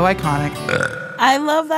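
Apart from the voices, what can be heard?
burp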